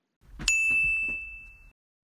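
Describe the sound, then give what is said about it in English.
A face scanner on the monitor outside a class gives a single high-pitched electronic beep as it scans a face, a steady sustained tone lasting just over a second, over faint low rumbling background noise with a few soft knocks. “When it scans their face, it makes a beep sound.”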